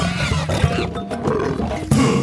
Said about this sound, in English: And that brings us to Stereotypical Animal Podcast Theme Song. Here to bring you to conservation news.